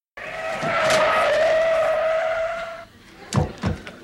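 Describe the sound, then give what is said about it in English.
A loud, sustained tire screech lasts about two and a half seconds and then cuts off as the car stops. Two sharp thuds follow, like car doors slamming. “The car screeches to a halt and in they come.”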